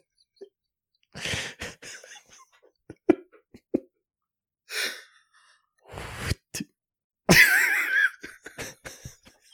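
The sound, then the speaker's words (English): A voice imitates a faint, airy, ghostly fart with several breathy, hissing bursts of uneven length, separated by short clicks and pauses, with no speech. “you know, this is the time when I would ask you for your impression of an occasional ghostly fart.”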